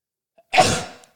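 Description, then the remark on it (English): A single sharp sneeze bursts out, preceded by a faint catch of breath, then trails off over about half a second with no talking. “dude, that was the longest setup to a sneeze.”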